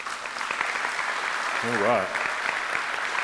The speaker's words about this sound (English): Now give God a praise clap.